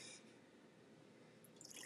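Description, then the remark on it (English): Bud Light beer pours steadily into a glass, a soft continuous fizzing splash with brighter hissy bursts at the start and end, fairly quiet, with no voices. “You hear that pour? It's the Bud Light.”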